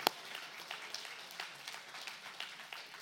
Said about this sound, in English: Yeah, don't patty cake. If you don't clap, clap.